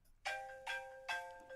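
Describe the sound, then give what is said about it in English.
A mobile phone not put on silent rings during a talk with a bright, bell-like ringtone, four ringing chimes in a steady rhythm, each sustaining briefly before the next. No one speaks over it. “Who did not put their phone on silent? Saved by the bell.”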